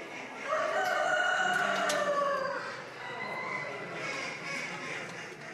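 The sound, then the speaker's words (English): At a poultry show, a rooster that is not pen trained, just brought out of an open shed and into a cage for the first time, lets out one long, loud crow, its strained call trailing off, followed by a busy backdrop of clucking and crowing from other birds. “the wannabe runaway cock wasn't pen trained, just brought out of an open shed and into a cage today for the first time”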